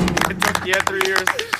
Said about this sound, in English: I like to get a round of applause for his nickname.